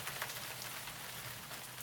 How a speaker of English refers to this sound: Today, he found an open window in Davy and Callie's dome greenhouse that he gratefully flew through to escape the crazy cold rain. Delmar listened to the pitter-patter of rain on the plastic covering of the dome greenhouse for a while.